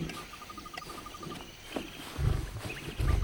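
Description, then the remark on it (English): Over a steady chirping of crickets, people loudly imitate a lion's roar, with two deep, rumbling roar bursts in the last second or so. “Let's all try one more time.”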